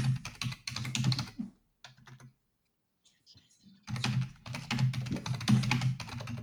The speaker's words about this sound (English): That is some furious typing, bro. You got to get one of those mechanicals.